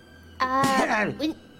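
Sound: sneeze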